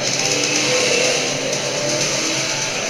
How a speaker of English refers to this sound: Let's speed up the car chase.